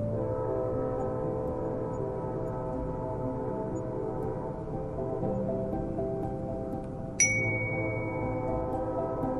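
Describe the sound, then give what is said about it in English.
A long, low train whistle drones steadily for several seconds on a still, windless, moonlit night, its deep tone holding without a break, with a brief sharp ding cutting in near the end. “Somewhere behind us, a train whistle blew, long and low, like a sad, sad song.”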